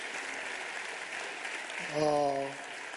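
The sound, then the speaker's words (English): A crowd claps steadily for the preachers, who are standing, in a dense, continuous patter, and partway through a single voice rises over the applause with a brief, sustained cheer or call before fading. “Let's get them a hand clap.”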